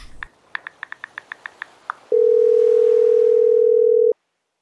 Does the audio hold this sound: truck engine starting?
no